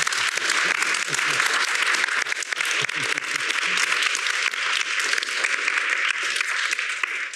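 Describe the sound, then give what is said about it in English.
A crowd applauds a discussion panel: a steady wash of many hands clapping at once in a dense, continuous roar that holds at an even, fairly loud level throughout. “Can we give our panel a round of applause?”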